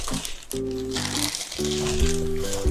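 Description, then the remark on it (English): Continuous crinkling and rustling of Star Wars gift wrapping paper being handled and torn open, over a steady low tonal hum in the background. “I have there's some Star Wars wrapping paper on one of these things.”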